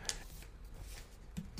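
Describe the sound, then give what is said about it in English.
Quiet rustling of double-sided paper pages being handled, a few brief crinkly flicks and scrapes spread over a second or so, soft, with no voices. “It's that double-sided paper again.”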